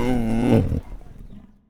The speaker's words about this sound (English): Once the tiger calmed down, he would talk into the microphone. He would just like go, and it would be like he was sort of telling me the troubles I've seen.